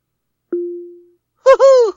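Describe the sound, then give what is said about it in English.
A single soft tone rings out and fades, then a smart speaker called Ziggy, asked to act like an owl, plays short, bending hoots of an owl call, two or three in quick succession, fairly loud and without any talking. “Ziggy, act like an owl.”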